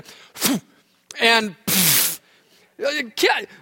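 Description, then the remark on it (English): A voice imitates Jesus clearing his throat and spitting, retelling the Bible story: five rough, harsh bursts with breathy hawking noises and one long hissing spit in the middle, loud and alone without speech. “Is he clearing his throat to talk?”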